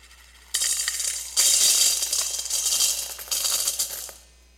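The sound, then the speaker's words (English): A stream of coins pours and clatters into a big metal offering container in a church, put in by people, in several bright, jangling bursts, loud, with brief lulls between cascades and no voices. “So the idea is that when the people would put their coins in, it had quite an effect, right?”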